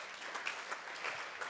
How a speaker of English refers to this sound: Thank you, Lord. Amen and amen. Let's clap the Lord.